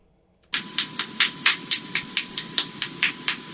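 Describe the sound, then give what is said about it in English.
A Swedish man cracks his joints in a world-record run of different joints in a row: a quick, steady run of about a dozen sharp, snappy pops, spaced almost evenly like a beat, over a faint constant hum with no talking. “That's joint cracking.”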